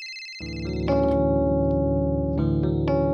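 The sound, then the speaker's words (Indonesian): An electronic telephone ringtone plays alone, a bright synthetic melody of sustained tones that swells in after a brief silence and holds steady and fairly loud, with a few note changes, for a phone call from the CEO of GE Indonesia. “tapi sampai satu hari kemudian saya mendapatkan telepon dari CEO-nya GE Indonesia, waktu itu namanya Stuart Dean, orang Amerika.”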